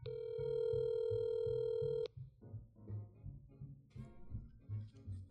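A loud, steady electronic phone ring tone sounds for about two seconds and cuts off, followed by softer, muffled low rumbling and faint background noise, like a call heard through a speakerphone.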